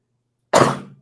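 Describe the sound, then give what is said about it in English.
A single sudden sneeze caused by allergies bursts out after a moment of silence, loud and breathy at first, then quickly trailing off. No one talks. “I'm dealing with a lot of allergy issues. You've heard me sneezing. You've heard me sniffling.”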